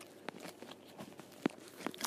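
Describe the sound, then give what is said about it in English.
Someone munching grapes, a soft series of irregular wet crunches and bites, one sharper pop standing out amid the quiet chewing, with no talking. “I'm just munching some grapes now.”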